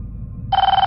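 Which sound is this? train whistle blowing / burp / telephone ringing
telephone ringing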